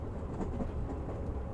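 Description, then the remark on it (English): A steady low rumble and hum of train wheels rolling on the tracks as the train moves slowly along, continuous and even, heard from inside a moving rail car with no voices. “The sound of the wheels humming on the tracks.”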